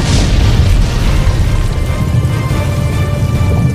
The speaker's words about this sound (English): Bombs whistled overhead, trailing smoke and fire. With a shattering boom, the old suit burst into flames.